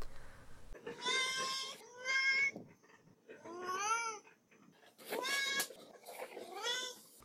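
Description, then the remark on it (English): Duarte, a cat, meows repeatedly, about five drawn-out, wavering cries in a row with short pauses between them, fairly loud with no one talking. “We'll turn to Duarte's corner and give him a moment to express his feelings about this book.”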